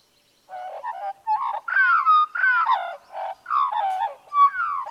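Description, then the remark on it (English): An animal call made of rapid, cricket-like chirping bursts that shift into sharp snapping sounds, repeating in quick clusters for several seconds, clear with no one talking. “I was going to say it sounded like a cricket or something. Or a locust, but then it started snapping.”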